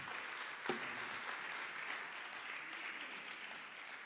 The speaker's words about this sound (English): Number 3, I said, whatever happens, we are finishing today. Clap for me to encourage me.